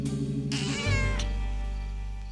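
A cat lets out a single drawn-out meow, close and clear, rising and then falling in pitch, while a deep rumbling drone swells underneath and carries on after it.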